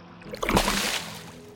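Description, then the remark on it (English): A single sudden splash of water, a loud whooshing burst that swells quickly and then trails off over about half a second, with no voices. “Then you're startled awake by a splash of water.”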